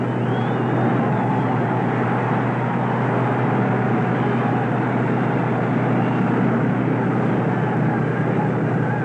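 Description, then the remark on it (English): A baseball stadium crowd at a World Series game between the Tigers and the Cardinals cheers as Al Kaline comes to bat in the first inning. The cheer is a loud, steady roar that holds without break for about nine seconds, a dense wash of voices with a low rumbling undertone and no clear speech. “The batter is Al Kaline, and listen to the crowd.”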